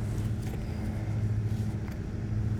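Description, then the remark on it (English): A steady low engine rumble fills a car's cabin, heard from the backseat, a constant droning hum with faint road noise and no talking. “Currently, I'm in the backseat of a car.”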